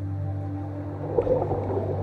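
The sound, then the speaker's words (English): A blue whale's song: deep, steady droning tones held for the whole clip, with a brief swell of rougher, watery sound partway through. No one speaks. “Let's swim with our friend for a little while and feel its song vibrate through our body.”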